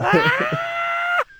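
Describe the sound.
A person voices a loud, sustained screeching wail lasting just over a second, mimicking a screaming movie alien. It holds steady and strained, then cuts off abruptly.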